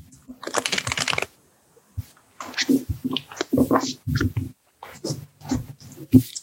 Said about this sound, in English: Let's shuffle. Let's each pull a card and then you can tell me if you want to go first or second.